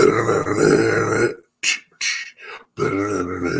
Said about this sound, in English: Let me clear my throat.